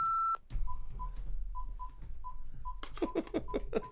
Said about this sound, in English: Yeah, let's buzz him in. Well, let me get on the intercom. Okay.